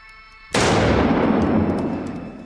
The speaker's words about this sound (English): I'm going to bring the gun up, fire 2 shots, one for each target, as fast as I can. Wow. And the gun must be cocked and fired for each shot.